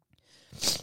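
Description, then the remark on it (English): A short, sharp nasal sniff, a hissy breathy burst that swells quickly and cuts off, heard on its own with no talking. “Oh, fucking sniffles.”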